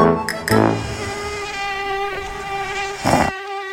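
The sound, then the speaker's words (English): A mosquito buzzes in a steady, high, nasal whine for several seconds, fairly loud, with a few brief noisy bursts near the start and end before it cuts off. “During the winter you can't see it, due to the fog obviously, and during the summer if you can see it, stay well away, saying that the heat and mosquitoes rule the roost.”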